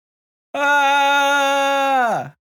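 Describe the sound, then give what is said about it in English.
A person demonstrates a bear yell, a yell meant to scare away a bear: one loud, sustained yell at a steady pitch, held for nearly two seconds before the voice drops and cuts off. No other sounds accompany it. “What do you yell at a bear to scare it away?”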